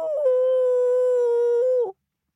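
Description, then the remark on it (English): A single loud voice imitates a wolf howl, holding one steady wavering note for almost two seconds before it dips and cuts off into silence. “Everyone threw back their heads and howled.”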